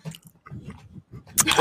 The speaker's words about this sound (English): You gotta chew, man. Chewing ASMR.